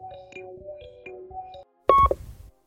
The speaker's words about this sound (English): Now he's trying my phone. You know what? Answer it. Put it on speaker.